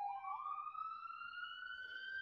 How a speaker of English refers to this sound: No. It was an ambulance passing by my house. I'm actually sitting outside.